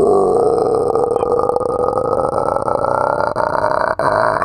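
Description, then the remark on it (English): A voice imitates a stomach rumbling during a crowded train ride from one station to the next, with a long, low, gurgling growl that holds steady and loud for several seconds before cutting off. “And suddenly, in the middle of the train, you know, the train ride from one station to the next, my stomach goes.”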